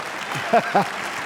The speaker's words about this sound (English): Yeah, you can clap for that, that's all right.